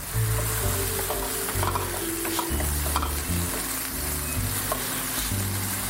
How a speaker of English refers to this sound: All right. While these onions are sizzling, I'm going to turn the heat to medium-low and stir them occasionally.